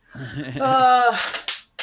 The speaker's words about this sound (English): I'm clapping for us. I'm not clapping for the musical. I'm just clapping for us. We did it.